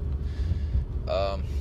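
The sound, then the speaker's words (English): A steady, low engine rumble fills a car's cabin while it's moving, loud and continuous throughout, with a brief voiced sound from someone rising over it near the end. “This may actually only be like 20 minutes, this segment here, because I'm in a car.”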